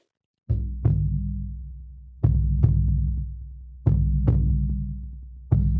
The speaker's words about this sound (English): So we'll start with the heartbeat rhythm as we discussed, and then you'll just hear my voice and a little bit of singing.